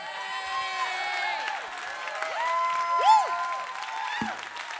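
An audience applauds steadily for several seconds, a dense wash of clapping mixed with cheers and a few high whoops rising above it, with no one speaking.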